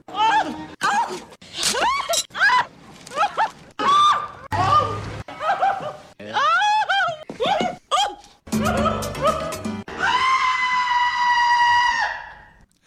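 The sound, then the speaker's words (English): A supercut of 15 movie clips of Nathan Lane's character Albert shrieking: a rapid series of a man's high-pitched shrieks and yelps, cut together back to back, each burst short and loud, ending in one long sustained scream. “This was 15 different clips of him shrieking in this movie.”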